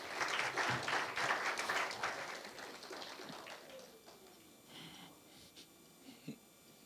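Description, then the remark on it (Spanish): A church audience bursts into dense, steady applause that stays strong for a few seconds, then thins out into scattered claps and quiet rustling before fading away. “¿Por qué no le dan un fuerte aplauso?”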